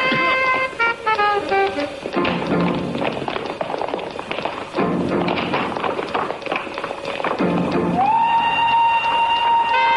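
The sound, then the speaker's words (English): A train rumbles loudly and steadily over dramatic music, then a long sustained horn blast rings out near the end, sounding powerful. “Hey, there's a train coming.”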